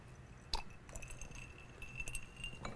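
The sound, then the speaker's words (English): A single bright clink of glasses touching in a toast, short, followed by a few soft handling clicks and faint rustling. “I think this is actually my third time, so cheers. Cheers, brother.”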